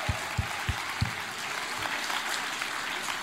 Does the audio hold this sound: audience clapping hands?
yes